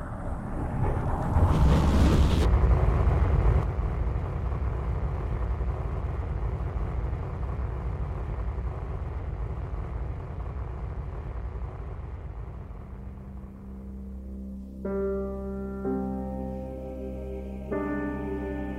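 A spaceship bus's engines roar loudly and steadily during takeoff as it climbs up through the atmosphere, in a deep, rumbling blast that thins gradually, with a sustained tonal hum rising near the end. No one speaks.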